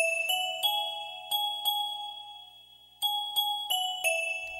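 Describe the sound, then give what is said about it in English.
Bells ring out in a quick, uneven string of about nine bright strikes, each chime lingering and overlapping the next, clear with no voices. “Bells trickle through the calendar, tinkling down the days almost ignored until November dies.”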